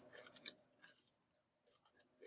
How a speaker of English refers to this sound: just crunching and typing. Just chowing hard.